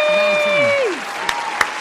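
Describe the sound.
Brief applause with a steady patter of clapping, while a voice lets out a long, high cheer that slides downward, followed by two sharper single claps near the end.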